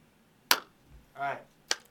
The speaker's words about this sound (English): So is that actually how you start? Just like a clap. we did it last time, like, because we wanted to sync with the video that we had over there